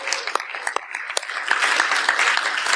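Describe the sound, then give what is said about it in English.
A church audience applauds steadily, many hands clapping in a dense, continuous wash of sharp claps that grows fuller and louder partway through. “You know, so we get another big round of applause.”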